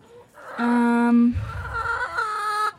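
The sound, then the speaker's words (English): A hen named Hennifer lets out a loud, drawn-out squawking call in a chicken pen, bright and harmonic, wavering in pitch over a few seconds with a brief low rumble partway through. No one speaks. “Hennifer is always making a racket.”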